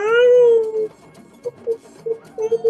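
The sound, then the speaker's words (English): A human voice imitates an animal, giving one long wavering howl followed by a string of short, yipping cries, fairly loud with no other sounds. “Go ahead and just internally or externally right now, make like a little like animal howl that you feel called inside.”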